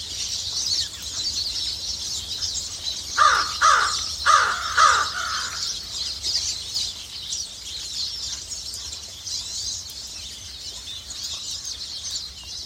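A short burst of harsh raven croaks, about five in quick succession, rings out clearly over a steady bright hiss of insects or flowing water, then fades back into the continuous ambient wash.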